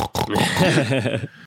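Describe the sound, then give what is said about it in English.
A human voice imitates pigs rooting, making a quick run of nasal grunts and snorting oinks, loud and continuous for about a second before cutting off. “The pigs are rooting through the shit right now.”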